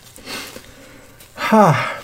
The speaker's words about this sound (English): And now, excuse me, I need to blow my nose because this soup is just burning me from the inside out.